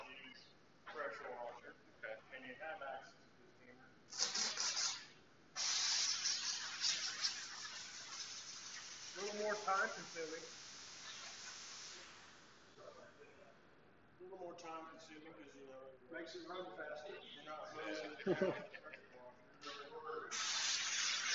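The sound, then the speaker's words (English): Hissing sprays from a pump sprayer applying water-based dressing to a car's engine bay for detailing: a short burst, then a long steady spray lasting several seconds, and another brief burst at the end, with a man talking in between. “So here you can actually detail everything, whereas the pressure washer is going to cover it.”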